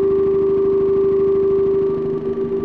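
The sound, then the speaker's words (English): A steady synthesizer sine tone from an Angle Grinder module, fed into a Mimeophone delay at its regular rate, hums loudly with a rapid, stuttering pulse running through it, as glitchy delay repeats ripple underneath, shifting slightly near the end. No one speaks. “I'm putting another sine wave out from the angle grinder into the mimeophone rate”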